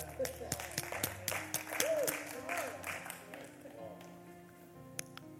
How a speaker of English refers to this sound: Yeah, I'll clap for that myself.